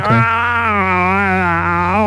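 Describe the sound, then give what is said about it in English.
A voice makes a sustained, buzzy, wavering moan for about two seconds, imitating a whale call. The pitch stays fairly steady with a slow warble and rises slightly at the end. “I think that's a whale noise.”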